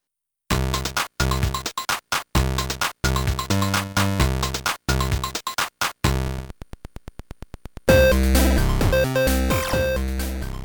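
Chiptune Game Boy music played through a Pro Sound mod plays loud and clean, with choppy bursts of square-wave tones and drum hits, a quick buzzy click-train passage, then a sustained bright chord section.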